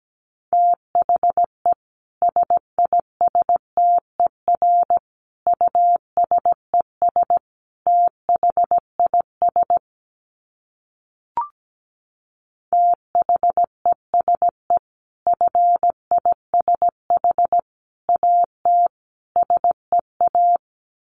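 A steady mid-pitched beep keyed on and off in Morse code at 17 words per minute, with a short pause and a faint click partway through before the dots and dashes resume.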